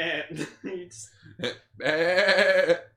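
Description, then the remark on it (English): A voice imitates a screaming goat: a few short guttural bursts, then a long, loud, strained bleating cry that holds for about a second. “No, just give him a screaming goat.”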